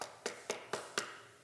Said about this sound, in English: Imagine with me, one night you're sitting at home and you're sitting down on the couch, you've just had a long day at work, and all of a sudden you hear a knock at your door.